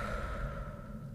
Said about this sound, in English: No, I'm talking about inhale through your nostrils, exhale through your mouth.